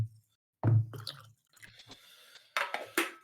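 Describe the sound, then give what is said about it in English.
Tea being poured into a cup, an uneven splashing stream broken by short pauses and a few soft knocks, with no one speaking. “And before I get into this, I just realized I need to pour myself some more drink.”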